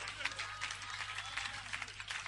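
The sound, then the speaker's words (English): Faint, scattered clapping from a church audience clapping for Jesus, uneven and half-hearted, with a few slightly louder claps standing out over a low, steady hum. “I think you are not clapping for me.”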